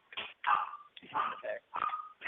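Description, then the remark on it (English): A dog barks in a quick series of about five short, sharp barks, somewhat muffled, with brief gaps between them. “With the dog barks? Who brought the dog to work?”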